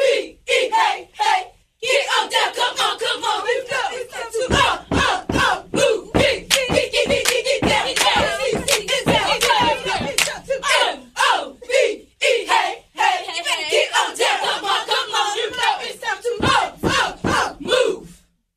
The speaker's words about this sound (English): That's right, it's a Cheerleader Friday, and in the building, we got Charlotte Ultimate Cheer getting ready to do their thing. Let's go, ladies!